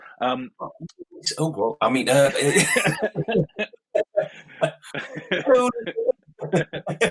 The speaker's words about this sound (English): that's an English pleasantry. That's how we say hello. It's a cough. The cough. Yeah. Bad cough.